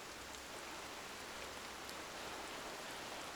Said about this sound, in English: lie down to watch the rain fall.